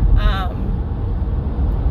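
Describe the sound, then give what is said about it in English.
A steady low rumble of road and engine noise from inside a moving car as it is driven, with a brief high-pitched warbling tone near the start. “So I am driving my honey bunny's car.”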